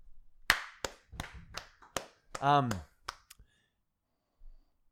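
About eight sharp hand claps in an uneven rhythm, loud and crisp, with a short drawn-out vocal exclamation breaking in partway through before the last couple of claps.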